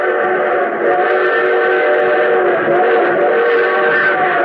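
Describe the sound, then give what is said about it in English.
An approaching train's whistle blows in one long, unbroken blast, loud and close, its rich chord holding steady for the whole stretch with no voices; the train is to pass within a mile and a half. “But our train whistle sounds closer.”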